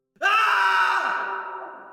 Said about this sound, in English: An ear-piercing scream in the middle of the night shattered the illusion that Fantasia would ever know a period of true peace.